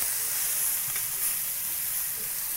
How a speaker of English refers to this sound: Get all that chicken out of there. Let's brown. No, that's it. I just turned it over. It needs the other side. Nice and brown.